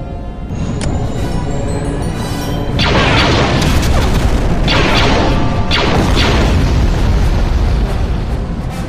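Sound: explosion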